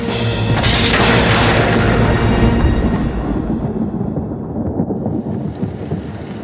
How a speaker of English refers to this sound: A heavy rain fell over the island as Lamar's mind raced.